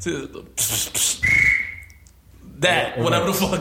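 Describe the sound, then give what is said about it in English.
A voice imitates a whistle with the mouth, one clear, steady high note lasting about a second, with a man talking just before and after it. “This nigga do some whistle shit.”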